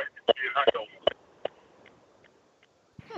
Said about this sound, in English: Massive echo. How odd. I don't hear it anymore. I'm actually driving, talking Bluetooth. I don't know. Maybe that caused the problem.